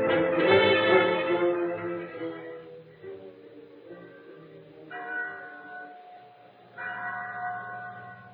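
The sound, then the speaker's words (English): The chapel bell at San Pedro tolls several times with rich, ringing overtones, each strike sustaining and slowly fading before the next, heard alone at moderate loudness. “There was a bell in the chapel at San Pedro. When it rang, its clear tones carried over the plains for miles in every direction and sounded a message for both Indians and white people.”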